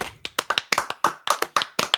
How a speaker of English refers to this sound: Guys, that'll do it. Let's end the show. Let's clap it out.